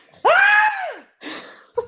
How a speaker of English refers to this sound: And that scream...